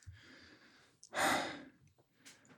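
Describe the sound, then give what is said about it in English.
Heavy, breathy panting after taking a deep swig of beer: a long rough breath, one big loud huffing exhale, then a short final gasp, performed by a voice with no words spoken. “And they take a nice deep swig and are panting.”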